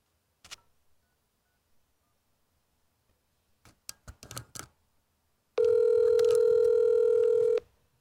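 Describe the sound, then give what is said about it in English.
A few scattered clicks, then a quick cluster of keypad presses as a telephone call is dialed, followed by a loud, steady telephone ring tone lasting about two seconds, clear with no one talking. “Let's get him on the phone here.”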